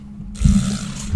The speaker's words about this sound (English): Yeah, like a huge gulp of like coffee there.